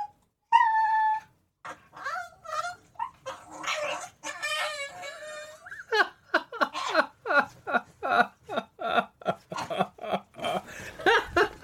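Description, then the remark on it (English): Two dogs squabble over a bone: high whines and yelps at first, then a rapid run of short, sharp grumbling yaps and growls trading back and forth, fairly loud, with no talking. “Ruby, you don't even want the bone. Leave your brother alone.”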